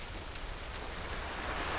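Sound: heavy rain falling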